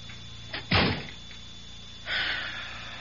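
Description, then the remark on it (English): A door swings shut with a solid thump and a brief rattle, then a soft scraping hiss follows a moment later. Moderately loud, with no voices. “If you want me to tell you what he said, shut the door.”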